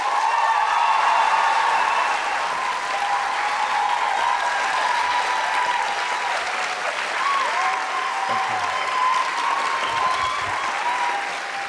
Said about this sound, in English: And now please welcome with a big round of applause. Please welcome Jenna Coleman and Peter Capaldi.